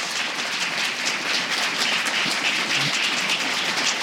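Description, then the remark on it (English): A crowd applauds its guests, many hands clapping into a dense, crackling wash of sound that holds an even loudness for about four seconds, with no voices over it. “So let's give our friends a chat, a round of applause.”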